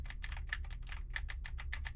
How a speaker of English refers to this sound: Now I am typing on a keyboard with Cherry MX Blues to see how much of my voice versus how much of the keyboard it picks up.